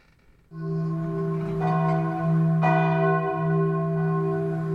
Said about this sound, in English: What did you hear? Yeah, simple. Church bells. Well done if you got that one right.